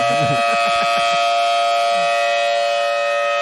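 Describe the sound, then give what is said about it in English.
A rotating civil defense siren wails steadily, its sustained tones holding level and loud throughout, with a few brief low rumbles and pulses underneath at the start. No one speaks. “You only work one day out of the month. Uh-huh. You scream and turn in a circle.”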